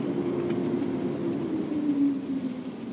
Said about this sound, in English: Can you hear the washing of the car? Can you feel the tiny bubbles? It's scrubbing the car on both sides. Scrub the car. Big fat dirty car. Grab it. Spray it.